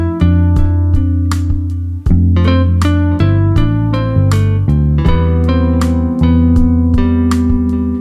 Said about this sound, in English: I'm trying to do the more laid back kind of dreamy style. This is my first time ever doing chill hop, so if it sounds crazy, let me know. But I kind of like that guitar. I just wanted to add some echo.